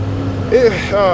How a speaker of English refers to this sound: What it is, about 1 in the morning, man, driving. I'm on a day job. So y'all bear with the engine in the background. I'm cruising tonight.